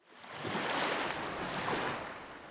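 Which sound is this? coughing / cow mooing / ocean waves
ocean waves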